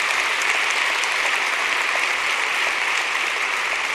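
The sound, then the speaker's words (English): A crowd applauds steadily, a dense, sustained wash of many hands clapping at once, loud, with no voices breaking through. “That deserves a clap.”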